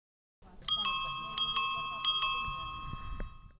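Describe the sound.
A bicycle bell on the community bike ride in Palisade rings in three quick double dings, each pair bright and metallic with a lingering shimmer, over a faint murmur of background voices.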